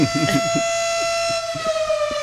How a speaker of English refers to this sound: Oh, that's just the noon whistle.